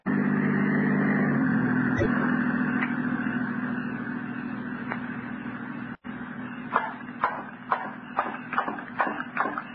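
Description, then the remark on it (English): An approaching patrol car's engine rumbles steadily with a low droning hum. In the second half a run of sharp, irregular clicks and knocks sounds over it. “The car approaching has a stoplight. This is the patrol car.”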